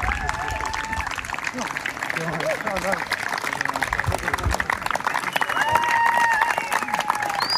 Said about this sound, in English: So loads of people here celebrating runners achieving 100 miles on the Suffolk Backyard Ultra course. Lots of applause.